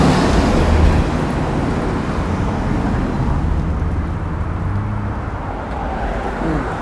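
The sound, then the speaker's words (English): A Honda Pilot SUV rolls by, a loud, steady rumble of engine and tire noise that swells slightly early on and holds for several seconds, with no voices. “Sorry, Honda Pilot.”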